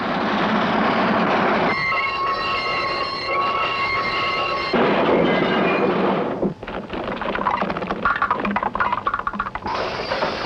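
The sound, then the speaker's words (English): A train rumbles steadily along the rails, loud, with a sustained high metallic screech of wheels for a few seconds, then continuing clatter and rattling as it rolls past. “By the by, Watson, turn that railroad switch, will you? I say, that leads onto a dead-end track.”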